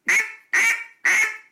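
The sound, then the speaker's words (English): Three crisp, evenly spaced quacks blown on a duck call imitating a fine hen, made with a closed throat and blown a little quicker, each a short nasal burst that tapers off quickly, fairly loud with no talking. “And a fine hen's going to be closed throat and it's going to be the same amount of air, but you're going to blow it a little bit quicker, right?”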